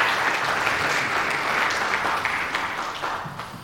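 A church audience claps for the student ushers in a dense, continuous wash of applause that holds fairly loud throughout, then begins to thin and fade slightly toward the end.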